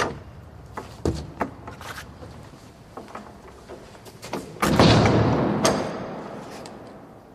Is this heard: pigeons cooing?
no